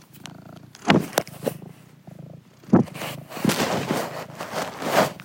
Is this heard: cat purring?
yes